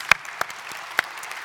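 Sparse, scattered clapping from a small audience welcoming a guest: a few sharp, loud claps about a third of a second apart over a faint, continuous patter of softer applause, with no talking.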